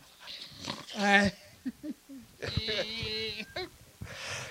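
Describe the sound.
A pig grunts and oinks in short, harmonic bursts, one longer squealing call in the middle, with brief snorts between and a breathy tail at the end.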